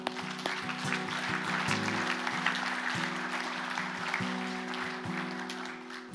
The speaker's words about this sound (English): Yeah, you can clap.